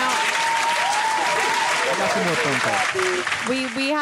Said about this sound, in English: Let's give him a roaring round of applause.